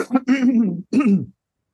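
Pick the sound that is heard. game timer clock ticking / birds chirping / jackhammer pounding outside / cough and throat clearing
cough and throat clearing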